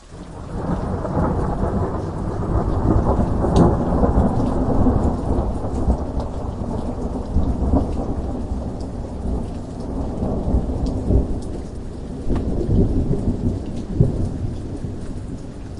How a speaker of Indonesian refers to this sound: Tiba-tiba, langit gelap dan hujan deras mulai turun.